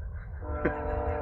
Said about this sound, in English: God, I love that train. When we get a studio one day, we're going to have to pipe in the train sound on top of it.